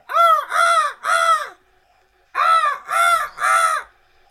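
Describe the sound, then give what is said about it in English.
A voice mimics a seagull's squawking call, six loud, nasal cries delivered in two quick bursts of three with a brief pause between, with no talking. “Could do a seagull. I mean, my noises are closest identified with the seagull, I think.”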